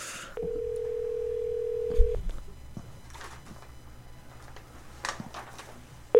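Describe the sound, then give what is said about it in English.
A phone line tone hums steadily for about two seconds, then the line goes quiet apart from faint clicks and rustle before another tone starts at the very end, like a call being placed and ringing. “and so let's give him a call.”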